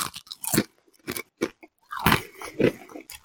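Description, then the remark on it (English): Loud crunching of a crispy chip bitten right up against the microphone and chewed, about five sharp brittle crunches in an uneven rhythm with brief pauses between, and no talking. “I'm about to check out the crunch factor here and see how these things hold up.”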